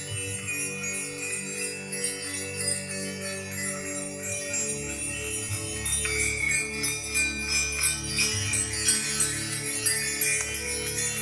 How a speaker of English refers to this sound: And I also like to use sound. So today I'm going to use these incredible little fairy bells.